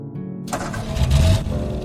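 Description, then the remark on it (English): A car engine cranks and turns over, then revs up with a rising roar as the vehicle pulls away into the mist, loud with no voices. “The car pulls away.”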